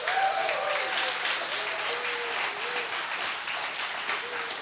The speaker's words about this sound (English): Can we clap for them?